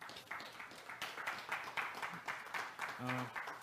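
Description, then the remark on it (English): A crowd at a worship service gives God a hand clap after a prayer, dense, steady clapping that fills the whole stretch, joined near the end by a brief low-pitched tone and scattered voices underneath. “Can you guys give God a hand clap?”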